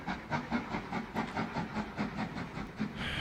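A steam train chuffs in a steady, rapid rhythm, each puff carrying a breathy hiss of steam over a low mechanical rumble, consistent throughout.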